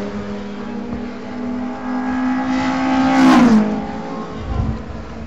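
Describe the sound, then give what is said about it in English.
A racing car roars past on a track, its engine note rising as it approaches and then dropping sharply as it sweeps by, leaving a fading rumble. No one speaks. “I am enjoying hearing the cars go by.”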